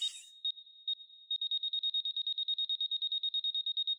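A bomb's electronic beeping from inside Pooh's stomach: two isolated high-pitched beeps, then a rapid, steady stream of sharp beeps that continues to the end. The sound is loud, with no voices.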